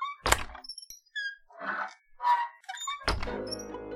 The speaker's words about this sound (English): He pushes on a swinging door on what looks like a cheap portable trailer.